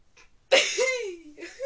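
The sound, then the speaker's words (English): A faint breath, then a single loud, raspy throat clearing with a groaning voiced tail that dips and rises in pitch, ending in a short second rasp. No speech. “Oh, I do apologize, just clearing my throat.”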